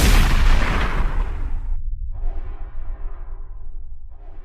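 shotgun blast

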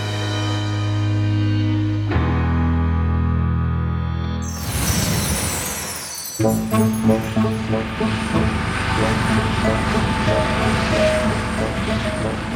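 helicopter flying

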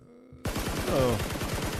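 gunshot sound effect

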